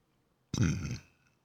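A single loud burp erupts after a moment of silence, rumbling low and throaty for about half a second before cutting off, with quiet afterward.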